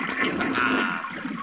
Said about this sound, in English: Whee! Roller coaster time! Down and... flush!